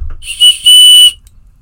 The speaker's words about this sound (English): Also on that micro cord, I have a very small, I don't know if it's aluminum or titanium, little tiny pill case, and in there I have water purification tablets, and also on there I have a very small whistle.